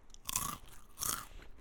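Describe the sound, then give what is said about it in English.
Two loud, crisp crunches of someone biting into Takis chips, each a quick burst of crackling with a brief pause between, no talking over them. “So it's very, there's an initial burst of acidity. Okay. Which is very typical Takis.”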